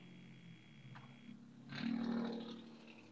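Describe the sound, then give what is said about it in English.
A motorcycle zooms past the house, its engine swelling into a brief, steady roar with a low hum, then fading away after a couple of seconds. No one speaks. “There's a motorcycle that just, like, zoomed past my house.”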